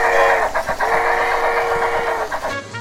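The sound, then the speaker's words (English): A copper train set rolls steadily along rails around the full length of a main bar, delivering drinks, with a loud, continuous droning whine and occasional faint clacks, then the sound drops away abruptly near the end. No one speaks. “There was also a copper train set that traveled around the full length of the main bar, which delivered drinks to lucky patrons who were seated there.”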